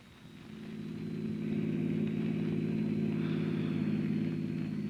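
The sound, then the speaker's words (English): A car engine hums steadily as Miss Miller's car drives along, its low rumble swelling slightly in the first second and then holding at a constant level with no voices. “There's Miss Miller's car, Chief.”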